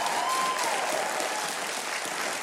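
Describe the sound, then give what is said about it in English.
An audience applauds the show's house band in Nashville, a dense, continuous wash of many hands clapping at even loudness throughout, with a faint whistle sliding down early on. “Hey, I think you need to give a big hand of applause to … over here, our house band.”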